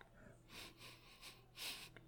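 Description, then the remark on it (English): Three airy sniffs through the nose, the last one longest and strongest, as someone smells a glass of Weller Foolproof whiskey from a bottle opened for the first time. “Let's give it a sniffy sniff.”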